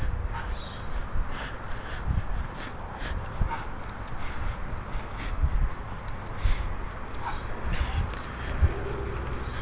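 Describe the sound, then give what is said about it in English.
A bird passes overhead, giving a few harsh, scattered calls over a steady bed of outdoor background noise, with occasional low thumps and rustles. “Another bird flying overhead.”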